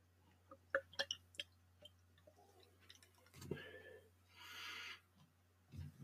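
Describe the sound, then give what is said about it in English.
A few light clinks and taps, then thick, dark bottled beer glugging out of the bottle in two soft pours with a fizzy hiss, over a steady low hum. “And another motor oil pour, just like last week.”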